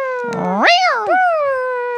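A single drawn-out cat meow, loud, rising sharply in pitch then sliding down into a long wavering tail, with no other sounds around it.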